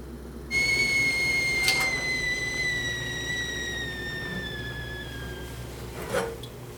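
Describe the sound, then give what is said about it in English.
A kettle whistles as water boils for tea, a steady shrill tone with layered harmonics that starts abruptly and holds for several seconds, slowly sagging in pitch over a low background hum, with no talking. “I boil the water twice just to make it safe.”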